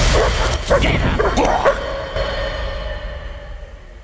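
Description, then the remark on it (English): A pack of angry hounds guarding locked chests of cash on an estate barks in a quick, overlapping flurry for under two seconds, loud, then the noise fades into a lingering ringing tail. “Now, the trouble is, guarding those chests full of cash is a pack of angry hounds.”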